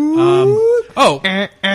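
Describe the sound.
A man's voice imitates a car alarm: a long rising whoop, then a sharp squawk and two steady, nasal held tones, loud and with no other sound alongside.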